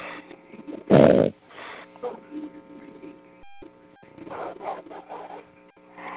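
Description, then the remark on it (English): A man snores: one loud, rough snort near the start, then softer raspy breaths and throaty rumbles over a steady low hum. “Because I ain't getting no thrill sitting here listening to him snore.”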